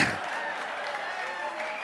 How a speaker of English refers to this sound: Oh, wait. What the fuck are y'all clapping for?